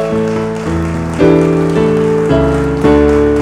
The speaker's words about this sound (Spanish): Vamos, alguien dice amén conmigo. ¿Alguien se atreve a darle un aplauso al que vive para siempre?